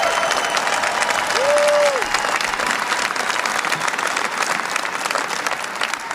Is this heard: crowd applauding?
yes